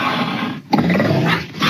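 Fierce, raspy growling and snarling from a young cougar (mountain lion) pouncing on and fighting a family dog in Laverne, caught on camera, loud, continuous with a brief gap in the middle before the harsh noise surges back.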